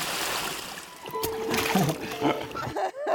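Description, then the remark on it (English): Rushing river water splashes steadily, a loud continuous churn as a raft moves through rapids on the Colorado River, with faint voices calling out over the spray. “And the third day, we spent rafting down the Colorado River.”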